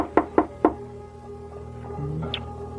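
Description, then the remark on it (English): Three firm, resonant knocks on the wooden door of a ramshackle house at night in quick succession, followed by a quiet, hollow pause with faint background noise. “No, I'll knock.”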